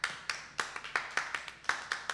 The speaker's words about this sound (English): Multiple claps, more people clapping, and lots of stuff.